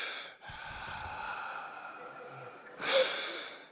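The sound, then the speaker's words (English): A person imitates the heavy, raspy breathing of someone on a breathing machine: one long drawn-out breath, a brief pause, then a second, louder forceful breath, with no talking. “like you on a breathing machine.”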